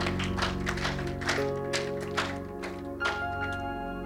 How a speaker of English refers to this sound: Clap for the Lord Jesus.